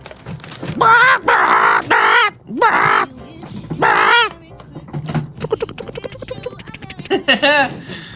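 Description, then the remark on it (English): Birds of paradise, rainforest birds, call with a run of loud, harsh, crow-like squawks, four or five in quick succession, then quieter scattered chatter and clicking sounds follow. “These are the birds of paradise.”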